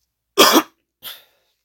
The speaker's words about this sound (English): But, oh, I'm so sorry for the coughing.